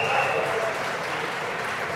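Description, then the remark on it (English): The audience of a neighboring presentation applauds in a steady, dense wash of clapping that holds at an even level for about two seconds, with a faint murmur of voices mixed in. “There's another presentation right next to us, so we get random clapping every once in a while.”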